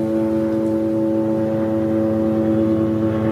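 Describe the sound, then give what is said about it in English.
An airplane drones overhead, a loud, steady engine roar with strong low humming tones that hold an even level for a few seconds, with no voices. “What the hell was that? You guys, oh, it's a plane.”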